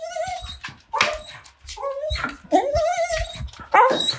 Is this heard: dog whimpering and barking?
yes